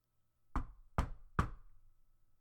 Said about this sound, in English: Anyway, I knocked on the door.